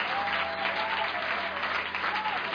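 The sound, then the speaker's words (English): An audience of believers claps and cheers steadily at a worship service, a dense wash of applause with faint whoops and voices mixed in, sustained at an even level throughout. “If I got a believer in the house, just clap your hands and make some noise.”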